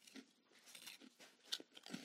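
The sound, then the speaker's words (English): Loud crunching of crispy salt and vinegar pork cracklings being chewed right into a microphone, with repeated brittle crackling bursts in an irregular rhythm and no talking. “I'll crunch right into the microphone.”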